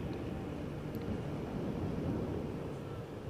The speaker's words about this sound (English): Well, I say like the airplane, like I predicted there'd be an airplane at this minute, but here is an airplane.